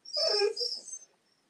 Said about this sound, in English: Oh, the dog. Yeah. So it's the dog.